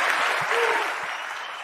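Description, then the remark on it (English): A crowd claps steadily in a dense, sustained burst of applause, fairly loud and even throughout with no pauses or voices standing out. “Yeah, she's like, the camera's on me. I better clap this up.”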